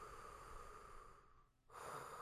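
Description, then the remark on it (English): Heavy, raspy breathing by wrestler Sin Cara, a long noisy exhale that pauses briefly before another loud breath begins; no talking. “He just seems to be breathing heavily.”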